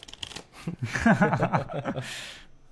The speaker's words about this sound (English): So what do I do with the cards that you gave me to shuffle in secretly?